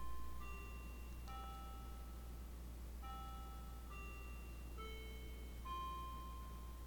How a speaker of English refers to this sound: Well, there goes the clock. Just thought I'd let that ring.